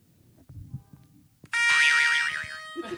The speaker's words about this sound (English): with his ever-changing buzzer.